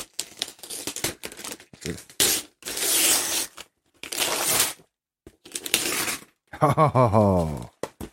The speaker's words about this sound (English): I'm going to tear the paper.